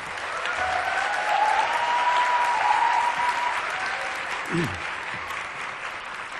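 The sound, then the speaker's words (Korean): Sustained applause from a large audience at a church youth gathering, welcoming a pastor coming out to speak, a dense steady wash of clapping lasting several seconds, with a faint voice or tone briefly audible underneath. “나오실 때 큰 박수로 환영하시겠습니다.”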